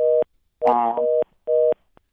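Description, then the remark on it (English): A telephone line's busy tone after a call drops and a participant is lost, sounding in three loud, steady electronic beeps of uneven length, separated by short silences, with a brief crackle of line noise during the second beep. No voices are present. “I think we lost Rabbi Friedman. Hopefully he'll reconnect.”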